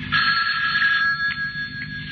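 A telephone in a house rings with a steady electronic trill, loud, repeating in short pulses for a couple of seconds with no voices.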